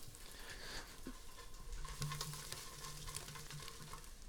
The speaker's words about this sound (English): Wow. Y'all hear that? Gee whoosh. Having an air fryer is like an oven and a pan mixed together. Like, I'm cooking tofu right now. Took zero work. I just drained the tofu, seasoned, marinated with some fucking soy sauce and some other shit.